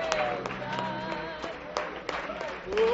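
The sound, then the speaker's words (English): An audience in a church at a night service claps hands in a steady rhythm, sharp claps landing about every third of a second, over sustained voices and tones in the background. “Let's clap our hands in great victory here tonight in the house of God.”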